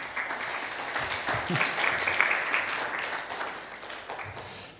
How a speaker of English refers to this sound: I think we should give him a wee round of applause.